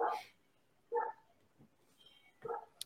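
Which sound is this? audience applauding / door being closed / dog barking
dog barking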